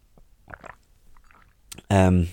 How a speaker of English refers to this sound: I'll just take a sip of my drink.